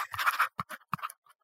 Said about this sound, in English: Actually, let me write it on a piece of paper and see if I get this right.